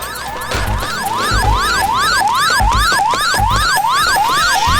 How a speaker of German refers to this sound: Als sie zusammen in der Raststätte waren und gerade eine Kleinigkeit verzehrten, hörten sie die Alarmsirene des Rolls-Royce.